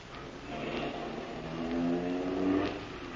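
A getaway car, parked at the curb outside a bank, revs hard and pulls away, its rising engine whine climbing and swelling in loudness over a few seconds, continuous with no voices.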